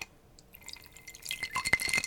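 Elijah Craig whiskey poured from a bottle into a glass, quiet, with soft gurgling and dripping that grows fuller and brighter toward the end, and no voices.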